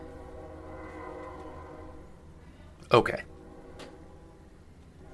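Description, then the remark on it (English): A train horn blares in a long, steady tone as the train conductor keeps laying on it, holding throughout while a person briefly speaks over it. “They're really laying on that horn.”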